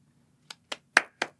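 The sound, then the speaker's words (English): Four hand claps in a steady, slightly uneven rhythm, close and moderately loud, each a sharp slap with a short ring; the third is the strongest. No voices. “It will be harder to clap in gauntlets, yes.”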